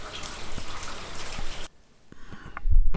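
Light to moderate rain with very low winds falls on a quiet street near Yardham Terrace with a dense, hissing patter, then abruptly thins to scattered drips and soft splashes, with a few louder drops near the end.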